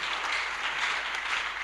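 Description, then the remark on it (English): An audience clapping together, a dense, steady wash of many hands with no pauses, loud and even throughout without any voices on top. “That kind of clapping shows that you don't need a”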